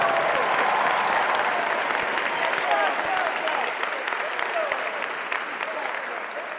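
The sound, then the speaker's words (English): Sustained, dense applause from a large audience, steady and loud throughout with a faint murmur of voices mixed in, slowly tapering slightly toward the end. “I don't think I've ever received that much applause in my life, so thank you.”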